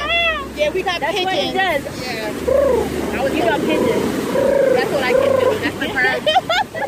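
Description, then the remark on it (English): A person imitates a Brooklyn pigeon's cooing with a string of fairly loud warbling coos that rise and fall repeatedly for several seconds over a low background hum. “That's the Brooklyn pigeon.”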